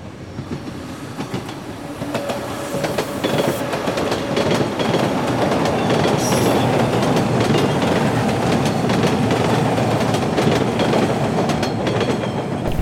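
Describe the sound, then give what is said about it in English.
A subway train rumbles steadily along the rails, loud, with rhythmic clacking over track joints and a faint metallic squeal, during a ride of a few stops on a swelteringly hot morning. No one speaks. “Exiting the subway, I returned to the scorching streets”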